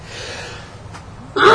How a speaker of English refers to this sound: Gesundheit.